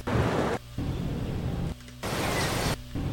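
Beach ambience with surf: a dense, steady hiss of breaking waves that drops out abruptly three times into brief, quieter gaps before rushing back in. No one speaks.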